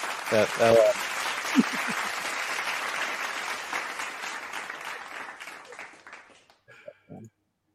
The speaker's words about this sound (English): Wait, I'm giving myself applause.